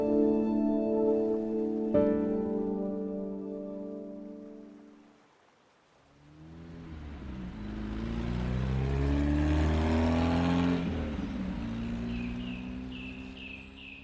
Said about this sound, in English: I want to wake up someday and realize that it's been years since I heard the constant rumble of traffic. A few cars still make deliveries or ferry people around, sure, but not like the old days.